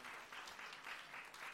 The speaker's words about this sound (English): In silver place is the cock womble himself. A round of applause there for that amazing work of art.